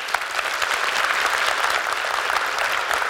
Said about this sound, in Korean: 안녕하세요. 이렇게 박수를 많이 받으니까 업되는 기분입니다.